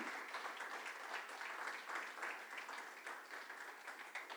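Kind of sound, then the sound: crowd, audience applauding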